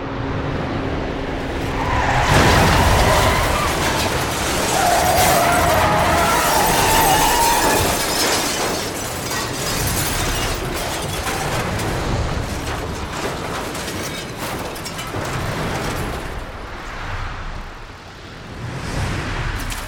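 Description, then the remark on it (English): An avalanche slams into a bus that has only half made it into a tunnel, with a sudden loud roaring crash, then a sustained heavy rumble mixed with shattering, scraping debris and engine noise that churns on for many seconds. “Only half the bus made it into the tunnel before the avalanche hit.”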